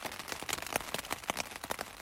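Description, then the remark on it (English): Steady rain falls during a walk, 20 feet from a house, with a dense, hissing wash, broken by irregular brighter patters and drips striking a surface. No one speaks. “And the reason is the rain.”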